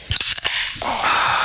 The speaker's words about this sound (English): Should we crack these bad boys open? Oh, hell yeah, we should. Right into the mic.